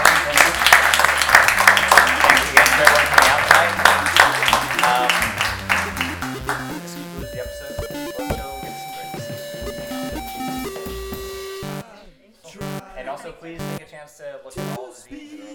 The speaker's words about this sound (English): So, big round of applause.